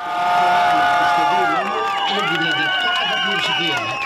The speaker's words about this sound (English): But the vote was ushered in to the sounds of cheers from LGBTQ+ activists watching on screens in the streets.